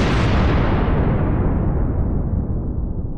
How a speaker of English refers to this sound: Mad Max Fury Road, the tanker explosion.